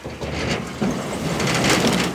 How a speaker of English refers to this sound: At one of Detroit's transfer stations just off the Southfield Freeway, Hicks backs up his truck and releases everything he's gathered on his last run.